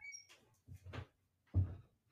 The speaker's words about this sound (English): Hold on. Let me shut my door real quick.